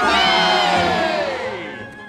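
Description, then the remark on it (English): A crowd gives three cheers, shouting together in one loud, sustained burst of voices that holds steady for about two seconds before easing off slightly at the end. “3 cheers for everything, Juice!”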